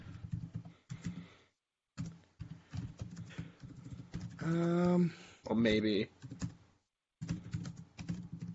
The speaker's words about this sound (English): Well, what are you typing over there